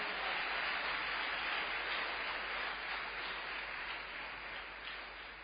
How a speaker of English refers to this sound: How many of you are attending for the first time? Wow. Wow. Clap your hands for our new brothers.